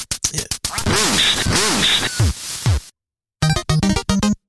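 Ducks quack loudly and rapidly in a noisy, overlapping flurry, then after a brief pause a second burst of five or six sharp, evenly spaced quacks follows.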